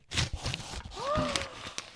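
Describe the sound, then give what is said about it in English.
Stiff brown craft paper wrapping on a package crinkles and rustles in a steady run of crackly bursts, while a voice briefly lets out a rising and falling murmur partway through. “And I would just like to point out that it is wrapped in brown craft paper, just like I did the Christmas presents.”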